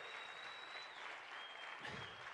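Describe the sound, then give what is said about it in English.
A church audience claps their hands together in sustained, dense applause at the preacher's call during a service, many hands blending into a steady, loud wash of clapping with a faint tone hovering above it. “Now clap your hands like you really believe you stepped into a season.”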